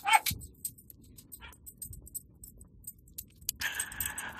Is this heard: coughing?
no